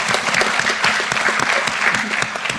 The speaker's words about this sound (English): It's you can applaud that, you know.